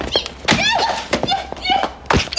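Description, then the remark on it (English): Sound effect of Rebecca stomping on a rat in a law firm: heavy squishy thuds, three or four wet impacts mixed with high, warbling squeaks, loud and isolated without speech. “Ew, the squish sound effect was nasty.”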